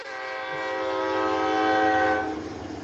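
A train horn blares in one long, sustained chord over the low rumble of a passing train, swelling louder and then starting to fade as it moves by.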